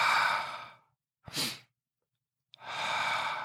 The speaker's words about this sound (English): And that's one of the main breathing patterns of like a sniff breath through your nose and then a long exhale from your mouth.